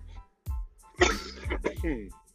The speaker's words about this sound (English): Act like y'all ain't hear that cough, man. I've been holding that cough in for 10 minutes.